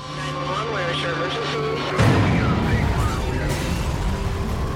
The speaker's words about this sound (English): Suddenly, at 3:30 a.m., the calm is pierced by the sounds of a fire alarm at Vail Ski Patrol headquarters.